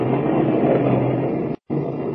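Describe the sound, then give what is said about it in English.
A steady, loud wash of heavy rainstorm roars over the low drone of a car engine as it climbs a winding mountain road in the Blue Mountains, with no talk; the sound cuts out abruptly for a split second before resuming. “And as we join them now, Lois and Horn and Kent are laboriously climbing up and down the winding mountain road, fighting their way through a heavy rainstorm.”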